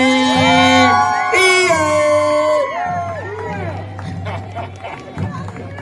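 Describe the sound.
A loud crowd cheers continuously for the East Aurora NJROTC cadet regiment, with rising whoops and shouting voices layered over a dense roar that fades slightly toward the end, as if an audience is applauding enthusiastically.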